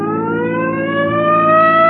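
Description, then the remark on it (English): A police car siren wails steadily on a main highway, its rising harmonic tone sweeping upward and growing slightly louder over two seconds, prominent with no voices over it. “Come on, hit your siren.”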